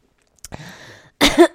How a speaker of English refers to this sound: Don't cough into the air, okay?